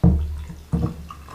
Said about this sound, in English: Just trying to get some good pours here. You're always the most precise pourer when you're splitting up something.